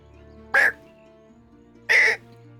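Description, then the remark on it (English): A person gives two loud, raspy caw-like squawks about a second apart, imitating a crow, with quiet background hum between them. “Oh, you make a good bird and it's unsettling.”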